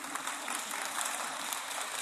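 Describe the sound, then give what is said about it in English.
A crowd claps steadily, a dense, even wash of many hands applauding at moderate loudness, with no voices audible over it. “I think Ken Ham showed me that news item yesterday, and I felt like applauding too”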